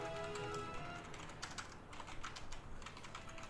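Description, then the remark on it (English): Rapid, irregular clicking of fingers typing on a computer keyboard, fairly quiet, with a steady low hum underneath and no voices. “None of us are typing notes to each other. Don't pay attention to any of the clicking.”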